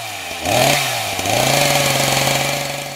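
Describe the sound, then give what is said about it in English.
A chainsaw engine revs up sharply, dips briefly, then roars again and holds a steady, loud buzzing whine, unaccompanied by any voices. “is we'll go into that cabin in the woods, we'll get the chainsaw, we'll go and carve ourselves a witch, mate,”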